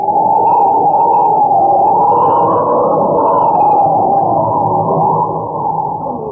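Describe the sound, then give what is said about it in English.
A steady, loud howling wind of a raging blizzard out on the mountains, called the worst ever seen, roars without a break, its low moaning pitch rising and falling slowly. No voices are heard. “There's a blizzard raging, man, the worst I've ever seen.”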